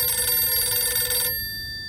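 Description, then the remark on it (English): A telephone bell rings in one sustained metallic burst for just over a second, then cuts off, leaving a faint lingering tone, with no voices. “He was so deep in his grief that he almost didn't hear the telephone ringing again.”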